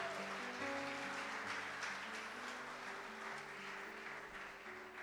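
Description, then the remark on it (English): Steady, dense applause from a large audience at a Victory Outreach service, clapping for the Lord: a continuous patter of many hands clapping together over sustained keyboard chords, with no one speaking. “Somebody clap. Come on, come clap.”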